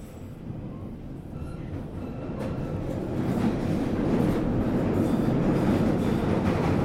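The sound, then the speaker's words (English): A Northern Line underground train terminating at Taibai rumbles along the rails, a dense roar that swells louder over the first few seconds, with faint rattling clicks from the wheels and no voices. “This is the Northern Line train, terminating at Taibai.”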